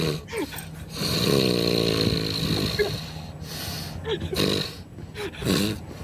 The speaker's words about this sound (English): Dog in the back.